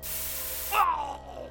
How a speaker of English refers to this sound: I reached into my pocket and pulled out a bottle of mace. I aimed it at his face and squeezed the red button, sending a stream of pepper spray down his throat.